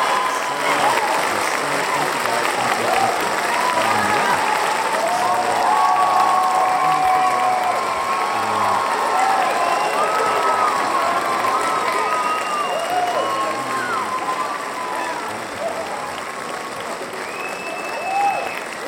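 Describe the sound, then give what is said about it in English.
A large crowd claps and cheers continuously for almost twenty seconds, with scattered whoops and whistles rising above the steady roar of applause, loud throughout. “Well, let's cheer for this.”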